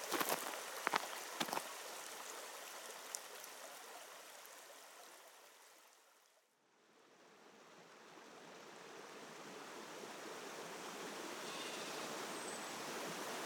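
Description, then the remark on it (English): The River Esk flows with a steady, full rushing roar, continuous, while walking upstream over a suspension bridge. A few sharp knocks sound near the start, and the water briefly fades away midway before swelling back. “it'd be lovely to share with you the joy of walking upstream by going over that lovely suspension bridge and enjoying the magic of the River Esk.”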